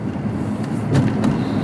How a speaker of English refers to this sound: But, yeah, I'm just rolling home. A little bit of fucking traffic here, man. I'm not too surprised. It's not that late. It's just before 7. But a little traffic here going into my, on my way here.